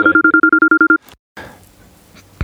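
A phone call's outgoing tone: a rapid train of about ten short, even beeps with a low and a high pitch together, then a click and faint line hiss, ending with a soft thump.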